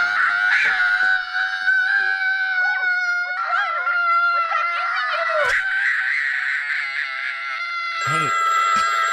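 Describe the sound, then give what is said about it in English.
A child's shrill, sustained scream used as a phone ringtone, loud, wavering and stretched out for several seconds with sharp pitch swoops, then a piercing electronic ring cutting in near the end. “Here's a horrible kid scream.”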